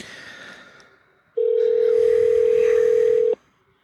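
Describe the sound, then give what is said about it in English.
A loud, steady telephone dial tone sounds alone for about two seconds as someone tries calling a person again, then cuts off abruptly, with faint room noise before and after. “I'm going to try him again. He might call me at the exact same time, too, which is always a thing.”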